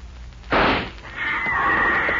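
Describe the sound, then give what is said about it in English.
A single rifle shot, aimed at a big cat on a rock ledge about 300 yards away, rings out, a sharp, loud blast that fades over about half a second, followed by a steady, high-pitched ringing tone that lingers to the end. “You're the only one who brought a rifle.”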